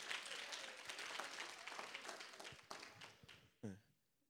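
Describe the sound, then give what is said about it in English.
An audience breaks into dense, steady applause for volunteers at a morning gathering, many hands clapping at once in a loud wash that thins out toward the end, with a brief voice rising near the close. “Give us a hand clap for my volunteers this morning.”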